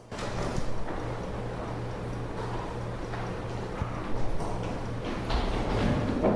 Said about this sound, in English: Those are the footsteps coming down the stairs.